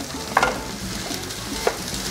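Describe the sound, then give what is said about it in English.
Ground sausage sizzles steadily in a pan, a constant crackling hiss broken by three sharp scraping clacks as a utensil chops through the meat. No one speaks. “Just like you would a ground beef, chop that bad boy up.”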